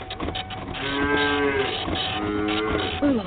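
sound effect, cow mooing sound effect

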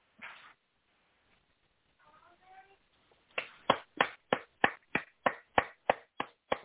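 human body sound, person clapping hands

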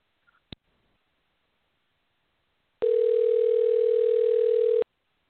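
signal or alarm, telephone dial tone

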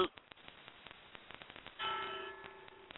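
signal or alarm, church bell ringing

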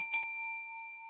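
signal or alarm, doorbell ring

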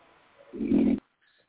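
sound effect, snoring

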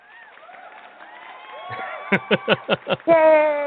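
crowd, applause clap track

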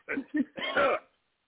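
human body sound, coughing

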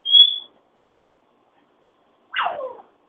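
bird, pet bird whistling

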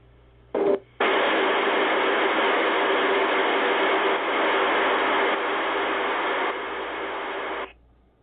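sound effect, radio static

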